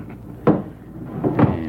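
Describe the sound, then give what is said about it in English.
A heavy wooden thunk, followed a moment later by a couple of duller knocks and a brief scrape, like a bar being dropped into place across a wooden door to bar it shut, with no voices. “Better make sure the door's barred tight.”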